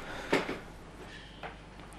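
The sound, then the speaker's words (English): A noisy chair scrapes or creaks in two short bursts, a louder double scrape near the start and a softer one later, with quiet background noise between and no voices. “Noisy chair. A regular feature. Move that noisy chair.”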